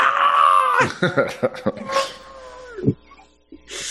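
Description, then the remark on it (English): A loud, piercing scream rings out in a house bedroom, sustained for nearly a second, then breaks into a series of sharp shrieking bursts that fade, ending with a brief hiss. “All of a sudden, blood curdling scream.”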